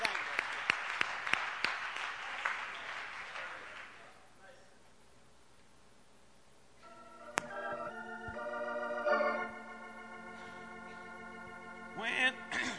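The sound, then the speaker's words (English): A crowd breaks into loud, dense applause with sharp individual claps for about four seconds, then it fades to near silence before sustained, steady musical tones rise. “Let's give him a big hand clap this morning.”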